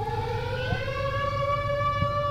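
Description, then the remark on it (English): A steady, wailing alarm siren holds a sustained tone with bright harmonics that slowly rises in pitch, droning continuously over a low rumbling hum with no voices. “Is that an alarm?”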